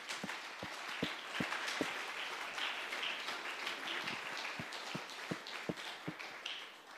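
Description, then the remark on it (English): An audience applauds the people working at the church for about seven seconds, a dense steady wash of many hands clapping, with a few sharper individual claps popping out at an irregular beat. “Let's just take a moment and clap our hands for them.”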